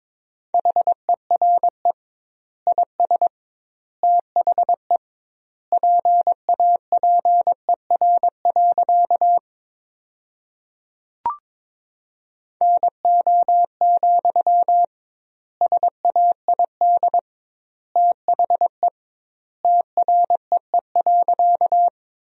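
Morse code tones sent at 22 words per minute with double word spacing, keying sentences built from the 300 most common words: a steady mid-pitched beep keyed in rapid dots and dashes, grouped into words with wide pauses between them, and one sharp click midway.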